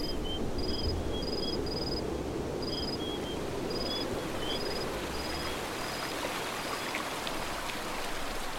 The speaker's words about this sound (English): Hopefully you can hear that water flow. It's the morning of day 2, and we are standing on the, I guess I'm standing on the bank of the Rio Grande River.